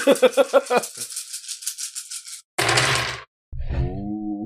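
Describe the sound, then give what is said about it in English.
A dense, rattling clatter of many dice rolled together for a mobility check in a tabletop game, lasting over a second, followed by a brief harsher burst and then a voiced sound at the end. “That was a lot of dice, too.”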